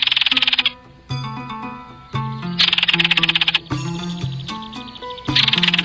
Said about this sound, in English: The one we just heard is today's featured feathered friend, the belted kingfisher, which can be seen year-round pretty much all over the lower 48, and in summer across Canada and Alaska.